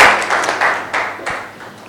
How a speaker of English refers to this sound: Clap your hands together, please, and you may be seated.